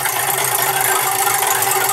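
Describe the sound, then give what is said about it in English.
A joke wheel spins with a steady, dense rattling clatter that holds at an even loudness for about two seconds, with no voices over it. “All right, spin the wheel.”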